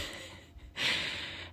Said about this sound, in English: I'm a little out of breath right now because I just ran up the stairs.